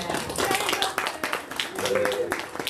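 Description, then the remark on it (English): A church audience claps for its helpers together in a steady, dense patter of many hands that holds for the whole stretch, with a few voices murmuring faintly underneath the applause. “What a blessing our helpers are. Let's give them a clap.”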